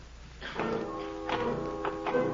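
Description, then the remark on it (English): Several irregular footsteps following someone tap on a deserted sidewalk, each a short crisp strike, heard over a steady, sustained musical tone that hums underneath throughout. “I heard footsteps following me. But when I stopped, so did the steps.”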